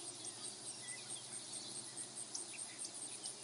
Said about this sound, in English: More sparks, more struggle, and then an eerie calm with only the chirping of insects.